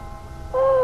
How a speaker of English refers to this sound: Well, now, it was late afternoon in the pretentious Calvert home on 11th Street, and as Jesse was descending the stairs to the living room, the doorbell rang.